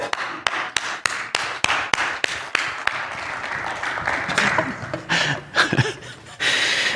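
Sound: audience applause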